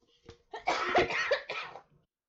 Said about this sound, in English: I gotta clear my throat. All right, clear your throat.